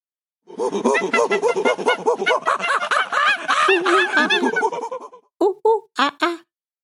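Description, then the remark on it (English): During a guided movement exercise, a voice imitates monkey sounds with a long run of loud, rapid, high-pitched hooting and chattering calls, then a pause and several short, sharp whoops. “What sounds does a monkey make?”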